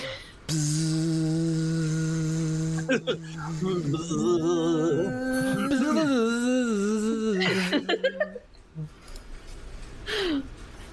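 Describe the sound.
Several voices hum together in a steady, droning imitation of buzzing bees, holding low notes that later waver and slide in pitch for about eight seconds before breaking off into brief vocal noises.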